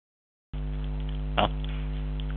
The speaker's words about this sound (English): turn off the refrigerator for a little bit, would you?